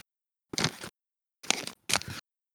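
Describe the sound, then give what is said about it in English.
A COVID antigen test sampler being opened: three short, crisp bursts of crinkling, tearing packaging, the last two close together, with silence between and no talking. “I'm just opening up the sampler.”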